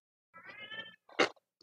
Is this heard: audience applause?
no